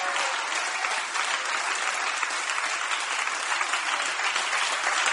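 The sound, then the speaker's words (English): Steady, dense applause from a large crowd, many hands clapping at once in a continuous loud wash of sound that holds level for the full five seconds without breaking. “Clap your hands once again, everybody.”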